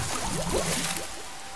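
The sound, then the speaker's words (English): A person falls into a very large water feature with a broad, rushing splash, followed by bubbly gurgling and sloshing that gradually settles, with no talking. “I am falling into the truly enormous water feature.”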